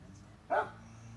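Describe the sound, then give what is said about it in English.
A single sharp dog bark cuts through a steady low background hum, loud, with no other clear sounds around it. “Got to be a lawnmower, dogs barking.”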